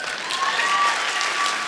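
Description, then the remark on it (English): A crowd breaks into steady applause, dense overlapping clapping that holds at an even level throughout, filling the room with a broad wash of hand claps. “But if God gives it to you, and you clap on this, because my notes say right here, they will clap.”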